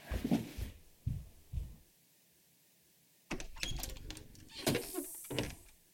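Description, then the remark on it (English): At night, a screen door closes in the distance with a few dull, muffled thuds, followed after a brief silence by a longer stretch of rattling, clattering knocks. “The sound of the distant thud of the closing screen door wakes Rose.”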